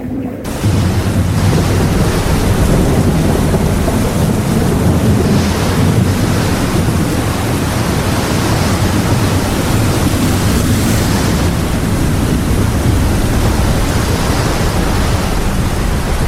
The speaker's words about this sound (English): The boat had started to rock in the choppy waters, and looking at the approaching clouds, he carefully unrolled the paper.